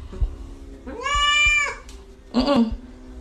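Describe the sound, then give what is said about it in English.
A cat meows twice, a long drawn-out meow followed by a shorter one after a brief pause, with a few soft low thumps in the background. “If you're happy and you know it, say meow.”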